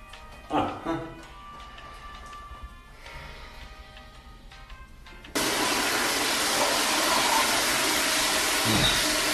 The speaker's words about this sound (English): Could have turned down the flush a little bit. The sound is so off.